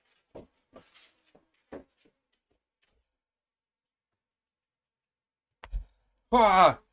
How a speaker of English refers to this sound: Oh my God, my dog is barking. Hold on, I'll be right back.